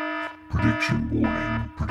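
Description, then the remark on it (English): A warning siren sound effect used as a prediction warning: a harsh, buzzy electronic alarm tone that pulses and wavers in pitch for about two seconds, loud and with no voices. “You should get some kind of like a health warning siren to be used when anyone ever does any predictions on this podcast.”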